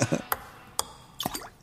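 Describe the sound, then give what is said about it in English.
A sound effect of a ball dropping into a glass cup: a few sharp, bright clinks with a short high ring, spaced unevenly as it bounces and settles, moderately loud. “I think it was a glass, by the way. They should have redone that sound effect.”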